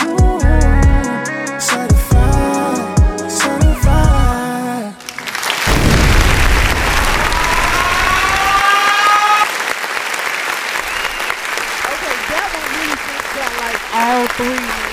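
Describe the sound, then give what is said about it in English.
A short musical passage cuts to a sudden booming explosion, followed by loud, continuous applause with a wailing siren sweeping up and down over it for several seconds. “Like, the applause, the explosion, and the siren.”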